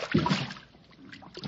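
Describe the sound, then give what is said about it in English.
Big bubbles from a sunken car glug and burble up through icy water in a short, uneven burst, fading briefly before another gurgle near the end; fairly quiet, with no one speaking. “no, it's just some big bubbles from the car.”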